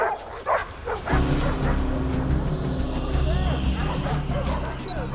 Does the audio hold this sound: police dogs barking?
yes